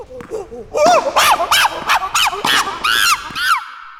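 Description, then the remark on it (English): A short comedic segment jingle, the 'chuckle jangle', built from loud, rhythmic honking calls, around eight goose-like squawks bouncing up and down in pitch before cutting off abruptly, with no talking. “No animals were harmed in the making of that jingle.”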